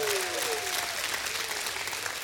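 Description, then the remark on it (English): A large audience at a church service claps steadily for God, a dense wash of applause, with a few voices shouting praise above it. “Somebody give God a great hand clap and a shout of praise.”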